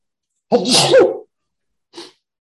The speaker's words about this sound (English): Gesundheit.